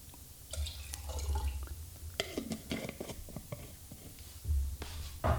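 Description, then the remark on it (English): Water is poured into a glass in uneven spurts, with small splashes and drips scattered over a low, steady background rumble. “Need some more water.”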